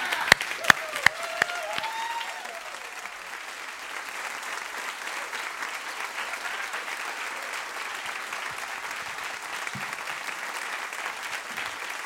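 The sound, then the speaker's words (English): Sustained applause from a large standing audience welcoming speaker Chad Williams, steady and dense for several seconds, with a few sharp claps and faint cheers standing out near the start. “And so I want to just welcome right now, and I want you to stand and give him an applause as we welcome Chad Williams.”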